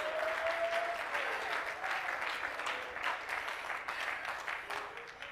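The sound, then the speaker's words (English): An audience claps hands steadily in praise of God during an evening church service, a dense wash of many overlapping claps at a loud, even level, with faint voices and a brief sustained tone mixed in beneath. “Come on, clap your hands and praise him tonight.”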